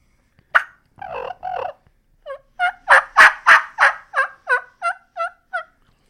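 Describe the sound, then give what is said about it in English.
A string of about a dozen turkey hen yelps made on a call, starting soft, swelling louder through the middle, then tapering back to soft, evenly paced. “One of the things I love to do when I'm yelping is go from a soft yelp to a louder yelp and then back down to a soft yelp.”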